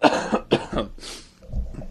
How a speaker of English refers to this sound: Here, I said I was getting over that cold, and I'm coughing.